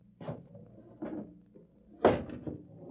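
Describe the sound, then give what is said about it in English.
A window is pushed shut: a few hollow wooden knocks and scrapes spaced about a second apart, the last one the loudest thump, with no voices. “Shut the window.”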